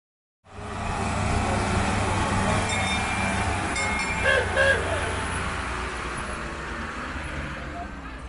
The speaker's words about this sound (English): All aboard! We're on the little train that goes from Jerusalem's Jaffa Gate and weaves through the sacred old city down to the Western Wall to pray.